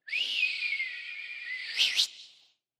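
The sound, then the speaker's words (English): A single long, piercing whistle held steady for about two seconds, rising sharply in pitch with a couple of bright flourishes before cutting off, a whistle calling kids home. Loud, with no talking. “Dad would step outside on the porch, whether it be the front porch or the back porch, and he would let out this long, blaring whistle.”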